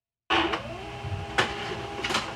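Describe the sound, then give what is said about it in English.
A printer runs steadily with a mechanical whir and a rising motor tone, punctuated by a few sharp clicks and clunks as paper feeds through, moderately loud. “If it's loud on this recording, I've been trying to get my printer to print, and it printed finally.”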